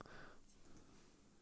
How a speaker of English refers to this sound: Let me type in psychic. Hard to spell. Psychic. Vampire.